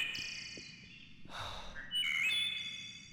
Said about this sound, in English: No, it was like a songbird.